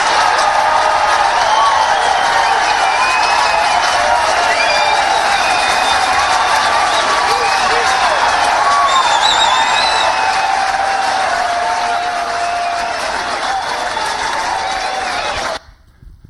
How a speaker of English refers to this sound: Look at the crowd. Look at their response. What did you see happening? People clapping their hands, okay, cheering.